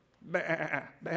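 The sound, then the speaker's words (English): A voice imitates sheep bleating, with a long wavering bleat followed by the start of a second one. It is fairly loud, with no other sounds around it. “But imagine you're trying to worship and there's 100,000 sheep.”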